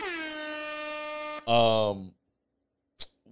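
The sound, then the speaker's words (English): An air horn sound effect blares loud: a long, steady honk of about a second and a half, then a second, even louder blast that cuts off abruptly. “Okay, I'll take air horns.”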